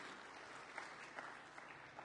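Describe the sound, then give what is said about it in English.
Sustained applause from an audience thanking a speaker for sharing an update, a dense wash of many hands clapping steadily with a few sharper claps standing out, moderately loud with no voices on top. “while you're clapping”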